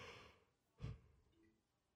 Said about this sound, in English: Sorry, just yawning over here because I'm old.